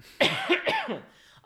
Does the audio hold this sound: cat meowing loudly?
no